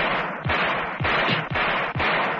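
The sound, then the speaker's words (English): A rapid series of loud revolver shots as the entire barrel is emptied at an advancing figure: four or five cracks fired at a steady pace about half a second apart, each a sharp burst with a low booming tail, with no voices. “Lambert emptied the entire barrel at the advancing figure.”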